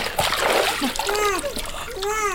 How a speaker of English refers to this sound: If you plunge him into hot water, then into cold, it might revive him.